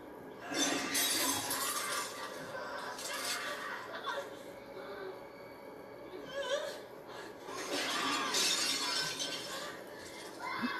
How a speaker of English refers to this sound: But still, that much broken glass on a floor is a problem.